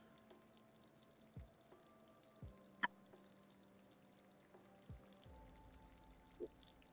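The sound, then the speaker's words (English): Sparkling water pours steadily into a glass with a fizzy, hissing texture, punctuated by a few soft clinks and knocks. Quiet, no talking. “I like spicy water. I like to have a little morning bubble.”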